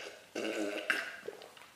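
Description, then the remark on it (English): A sip of water: a short slurp and a low, throaty gulp, then a breathy exhale with a couple of small mouth clicks, all fairly quiet and with no talking. “Let me get a sip of water, though.”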